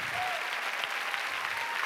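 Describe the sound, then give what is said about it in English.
A standing crowd applauds steadily to cheer on those who served and fought for their country, a dense wash of clapping with faint cheering and whoops mixed in, loud and continuous throughout. “And as I was walking through the room, stay standing, come on, let's cheer on those who have given their time, their sacrifice for our freedoms.”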